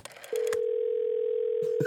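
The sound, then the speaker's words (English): A steady, unbroken telephone dial tone hums at a constant pitch for about a second and a half as someone phones their lawyer, starting abruptly after a few soft clicks, with faint rustling near the end. “Let me call my lawyer.”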